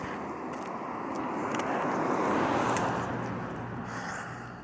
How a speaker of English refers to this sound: Another car. Another car is passing by.